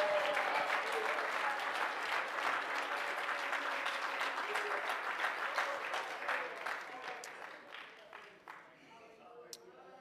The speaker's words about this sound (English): Oh, everybody clap your hands and praise Him tonight.